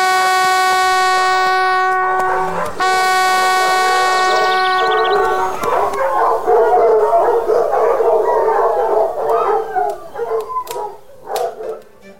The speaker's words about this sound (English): You may sound the horn.